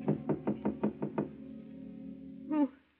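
Seven quick, firm knocks rap on an apartment door at night in an even rhythm, followed by a pause with a faint lingering hum, then a brief voice-like sound right at the end.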